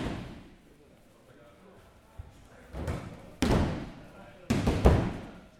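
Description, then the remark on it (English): Bodies slam hard onto wrestling mats during practice moves in a few heavy, booming thuds, irregularly spaced and growing louder, with a low murmur of room noise underneath. “Bodies were at this point slamming hard on the mats from practice moves, but shortly the real action would begin.”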